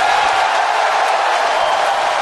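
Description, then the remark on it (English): A large crowd cheers and claps in a loud, steady, unbroken roar of applause and shouting, with no single voice standing out. “Yeah, you can clap.”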